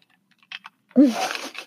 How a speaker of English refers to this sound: That was the most unquiet sip. It was I know. I usually try not to drink my drinks with ice in them because they're so loud, but I was stressed with school and I couldn't breathe, so I made myself a whiskey sour.